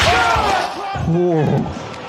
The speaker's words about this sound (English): Cole through the chair. That's brutal.